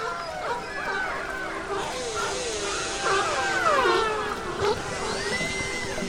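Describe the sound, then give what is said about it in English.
Orcas and sea lions call over one another in a dense chorus of rising and falling whistles, squeals and yelping barks, continuous, with a faint hiss beneath. “From orcas and sea lions,”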